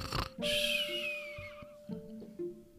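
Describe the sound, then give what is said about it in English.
A cartoonish snore from a sleeping woman: a short snorting inhale followed by a long, falling whistle on the exhale, with a steady tone and soft pitched notes underneath. “10 seconds later, she was snoring.”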